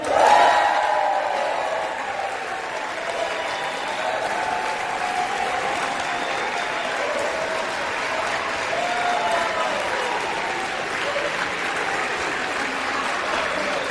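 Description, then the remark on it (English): A large crowd in the US House chamber in Washington, D.C. applauds and cheers continuously after the 11th loss, Democrats cheering for Hakeem Jeffries, with scattered shouts and whoops rising over a dense, steady roar of clapping that swells at the start and holds throughout. “This is the jeering and the cheering that was going on after the 11th loss”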